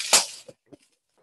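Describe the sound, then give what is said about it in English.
A short, crisp burst of crumpling packaging wrap from a parcel ordered from a glass shop, followed by a couple of quieter crackles as the material settles, with no talking. “So there's wrapping. There's a lot of packaging, which I can appreciate because it's a glass website.”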